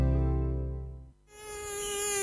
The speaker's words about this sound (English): A mosquito plague is currently raging across the 1FM listening area. To make things worse, the mozzies can carry diseases like Ross River Fever, Barmer Forest Virus, and the potentially deadly Murray Valley and Japanese encephalitis.